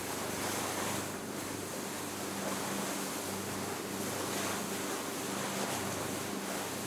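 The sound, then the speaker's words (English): A continuous, fairly loud wash of water waves along the shoreline of Smith Island, steady and unbroken, with a faint low engine-like hum and a breath of wind underneath. No one speaks. “At all angles, the water is intruding.”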